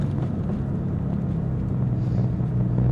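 A steady low rumble of a car engine and road noise while driving, continuous and fairly loud throughout, with no voices.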